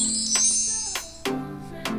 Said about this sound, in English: Without a second thought, she entered the bakery. The chimes welcomed her entrance.